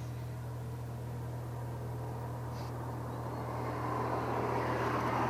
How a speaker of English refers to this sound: Cars passing. There's cars everywhere. Yeah, there are. All over the highway.